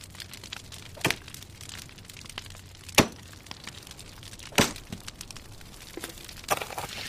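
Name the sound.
campfire crackling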